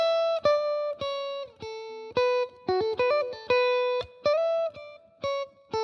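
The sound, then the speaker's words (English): A solo electric guitar plays a quick riff rundown of bright, sustained notes with sharp attacks on frets 12, 10, 9, 5, 7, one note sliding upward in a string bend before the phrase ends; no voices. “And then the rundown is 12, 10, 9, 5, 7.”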